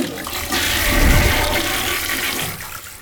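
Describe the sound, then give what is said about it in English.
A toilet flushes with a loud rushing whoosh of water that swells within the first second, then settles into a steady draining gurgle that slowly fades. “Let's see if this thing can get flushed.”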